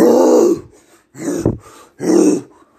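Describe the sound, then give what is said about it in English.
A monster growls in three deep, guttural bursts, each about half a second long with short pauses between them, loud with no talking, as it catches sight of its opponent just before a fight. “Starts growling as soon as he sees him.”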